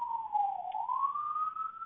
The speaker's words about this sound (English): They're coming for us. They're coming. Do you hear the siren?